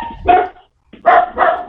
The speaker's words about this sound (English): Whoa, what was that? I know. Somebody killed your dog. My dog's barking at your dog. Yeah, mine are going crazy right now. I think the mailman's here.